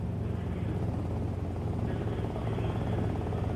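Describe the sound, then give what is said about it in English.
A helicopter's steady, loud, rumbling rotor drone fills the whole stretch, with a constant thudding low end and no change in distance; someone aboard is inbound, about to parachute out onto a house roof. “Hey, I'm inbound right now, and in a couple of minutes, I'm going to be parachuting out of this helicopter to land on your roof.”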